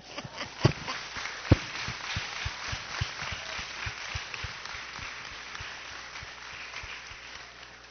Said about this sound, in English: Just want to say it's Father's Day, so we should clap it up for the dads.